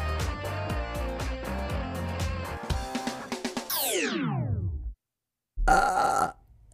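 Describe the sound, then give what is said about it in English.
A loud, short burp erupts after a brief silence, following a stretch of rhythmic music that ends in a sweeping downward slide. “I wish when I burped, people driving in their cars, it would like go through their vents, you know what I mean?”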